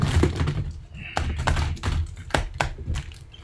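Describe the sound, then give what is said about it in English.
Shuffling of a small stack of trading cards from booster packs: a quick series of soft taps, flicks and slaps as the cards are handled, with faint murmuring in the background. “Let's just shuffle them up.”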